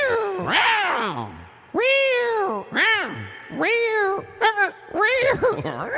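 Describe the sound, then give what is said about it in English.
A person imitates a cat with a string of drawn-out, rising-and-falling meows, about six in a row, loud, each trailing off with an added reverberant echo effect. “Hey, keep it on echo. Make a cat on echo.”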